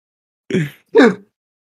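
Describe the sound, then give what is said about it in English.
Two quick, forceful sneeze bursts in a row, each about a third of a second, breathy and voiced, sounding out alone against silence. “Bless you.”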